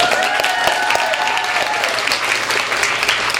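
A crowd applauds again for the event's previous speakers, dense overlapping claps forming a loud, continuous wash of sound with a few brief cheering tones on top, sustained throughout without a break.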